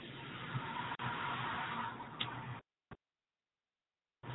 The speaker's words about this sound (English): This traffic fucking rough today. That's I've been in the car for a solid hour.